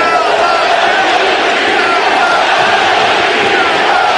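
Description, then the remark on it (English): A huge baseball stadium crowd at the Coliseum roars steadily and loudly, a dense wall of cheering and yelling voices that stays intense for several seconds without letting up. “We heard the crowd go silent and now getting very loud at the Coliseum.”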